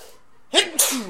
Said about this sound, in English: And I'm going to sneeze.